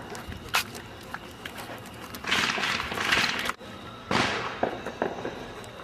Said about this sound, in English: Okay, here's all the fireworks. They're very close.